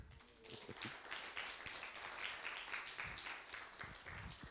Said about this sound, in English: Give her a clap.